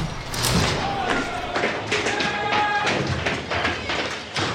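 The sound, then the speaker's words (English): A change room door swings open with a series of clunks and thuds, followed by a busy, echoing space full of scuffles, taps and indistinct chatter in the background. “So how about we open the change room door and give Rowdy McLean a whiff of well-being?”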